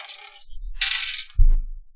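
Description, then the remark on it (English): Four dice clatter and tumble across a hard tabletop for a physique roll, a quick burst of bright rattling followed by a heavier knock and a short settling roll, fairly loud with no voices. “Give me one more physique roll.”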